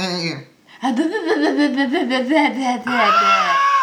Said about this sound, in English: Wild goats in the woods. You hear the bleating occasionally.